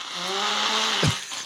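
Someone blows their nose in one long, buzzy honk with a low droning tone, ending in a sharp, loud burst before tapering off.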